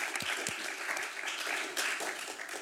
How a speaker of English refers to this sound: Thank you very much. And applause, please.